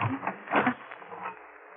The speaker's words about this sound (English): Now, we'll lock this door on the outside.